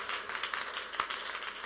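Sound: audience clapping hands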